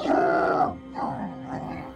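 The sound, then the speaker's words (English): A small grizzly bear's low growl and rumble, loud: one drawn-out, throaty growl followed by two shorter rumbling swells, with no talking. “Before he could scurry in the direction of the hare, he heard a low growl and rumble.”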